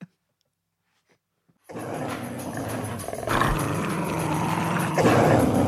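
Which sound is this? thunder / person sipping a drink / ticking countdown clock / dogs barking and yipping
dogs barking and yipping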